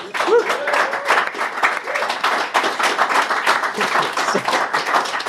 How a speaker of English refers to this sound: It's quite a feat, isn't it? Yeah, isn't that amazing? So a round of applause for Hayabusa 2.